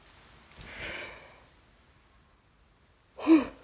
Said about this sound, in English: Sorry, first yawn of the podcast.